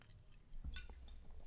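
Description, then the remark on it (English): A short, soft splash of liquid running into a glass, with a brief burst of trickling and light dripping, and no voices. “Let's do a nice pour.”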